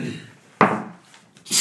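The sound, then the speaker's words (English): A single sneeze bursts out suddenly and loudly, then trails off into a breathy hiss. A short rough, rasping noise follows near the end, with no talking. “Bless you.”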